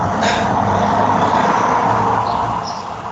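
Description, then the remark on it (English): A loud car roars past outside, a broad rushing engine and tyre noise that swells and then fades slightly as it moves away. “those cars are loud, dude.”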